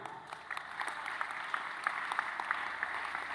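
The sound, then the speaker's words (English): An audience claps their hands together in a steady, dense burst of applause, many hands sounding at once, continuous and fairly even with no voices standing out. “Somebody, you can clap your hands better than that.”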